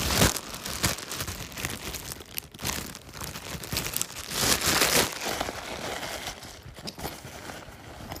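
Rustling and crinkling as extra alcohol wipes and needles are stuffed into a bag, with bursts of crunchy, tearing-like noise and shuffling handling sounds throughout, no talking.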